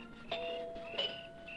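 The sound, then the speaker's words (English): The front doorbell of Arnold Carr's house chimes twice, each ring striking a bright, bell-like tone that hangs and fades briefly before the next. The ringing stands alone with no voices, at a moderate level. “Well, the least he can do is hear his own doorbell.”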